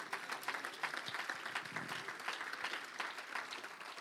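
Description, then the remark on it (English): An audience claps in praise of the Lord at a service tonight, many hands beating in a dense, steady wash of applause that holds at an even loudness for the whole stretch, with no voices standing out. “Somebody give the Lord a hand clap of praise tonight.”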